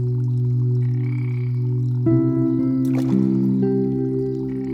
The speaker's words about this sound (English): A bullfrog sounds a mating call, then splashes in the water.